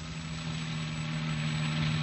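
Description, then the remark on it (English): A car engine idles steadily with a low, even hum, continuous, with no voices heard, as the car pulls up in the Echo Park residential district. “You want to pull up here”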